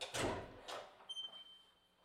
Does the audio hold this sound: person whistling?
no